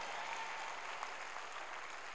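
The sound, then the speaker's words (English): A crowd claps steadily, a dense, even wash of many hands applauding at once with no voices on top, holding at a constant moderate level throughout. “Your clap.”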